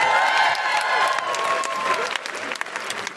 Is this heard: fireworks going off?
no